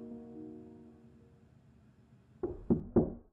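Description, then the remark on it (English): Three firm knocks on a wooden front door, evenly spaced, following a fading sustained musical tone with no one speaking. “Papa, get the door!”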